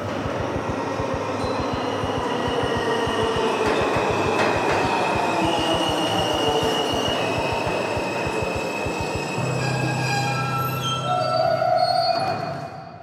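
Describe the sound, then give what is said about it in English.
A subway train rumbles in steadily with rapid rhythmic clatter of wheels over track joints, then high metallic squeals of the wheels rise near the end as it slows, loud. “And the train is a-coming.”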